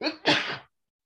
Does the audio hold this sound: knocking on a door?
no